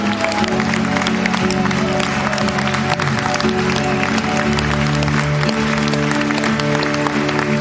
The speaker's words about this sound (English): Can we give a round of applause for these moms?